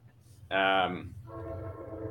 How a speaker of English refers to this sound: So, here comes the train.